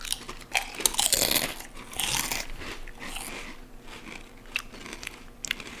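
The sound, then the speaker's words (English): Crisp, crackling crunches as a chip is bitten and chewed, with a loud burst of crunching early on followed by softer, irregular chewing sounds and a few sharp snaps. “Oh, I fucking broke my chip.”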